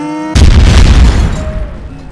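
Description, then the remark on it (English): A sudden, loud grenade blast erupts after a brief tonal hum, its deep booming roar rumbling for about a second before decaying into a fading crackle and low noise. “I wasn't sure why I was carrying a grenade, but I'm glad I was.”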